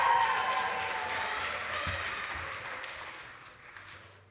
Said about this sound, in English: Oh, it's go, go, go, go, go. Give them a cheer. Come on.